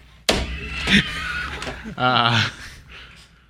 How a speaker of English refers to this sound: Hit the scream button